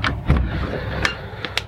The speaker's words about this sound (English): Shut the studio door, I think.